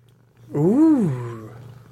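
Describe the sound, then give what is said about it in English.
A single drawn-out cat meow that rises and then falls in pitch, lasting about a second, loud over a steady low background hum, with no talking. “Poor cat.”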